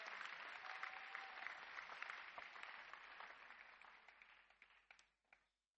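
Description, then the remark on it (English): A crowd applauds steadily, a dense wash of many hands clapping, then the clapping thins into a few scattered claps and fades out near the end. “Clap for Zinzendorf.”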